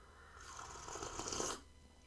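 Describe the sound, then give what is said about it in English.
A single slurp of hot peppermint tea, an airy, hissing intake of breath and liquid lasting about a second before it cuts off into quiet room tone. “Sorry about the sipping noises, but I accidentally got the string bit caught in my mouth while I was sipping my peppermint tea, which apparently is good for digestion.”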